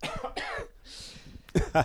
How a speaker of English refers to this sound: Not really. I think I just had a cough.